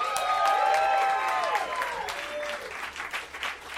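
A comedy show audience applauds a comic introduced for round two, with steady, dense clapping, while a few whoops and whistles rise over it early on. The applause thins and fades toward the end.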